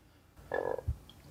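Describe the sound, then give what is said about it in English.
A single short, buzzy croak made in a person's throat imitating a frog, fairly loud, followed by a brief low thump, with no talking. “And then you literally ate the frog because it just... It did. It came out of your throat.”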